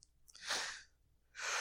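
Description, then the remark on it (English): A breathy yawn: a rushing airy burst that swells and fades, then a second noisy exhale starting near the end. No talking, just loud breath. “I can't believe that yawn hit me right exactly then.”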